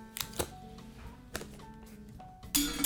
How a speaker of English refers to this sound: It's metal. It's just not super metal. The Apple card is like titanium. That shit is like hefty. Here. Knock it on this.